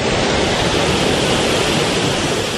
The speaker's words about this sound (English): The water level lowering at Lake Mendocino, water rushing out of a gate at the base of the Coyote Valley Dam.